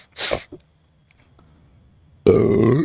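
A loud burp rumbles out after a couple of short breathy bursts and a quiet pause, long and guttural with a rich low resonance, recorded right up against the microphone.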